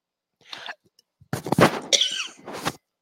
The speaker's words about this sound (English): I should probably hit the mute button before coughing into the mic.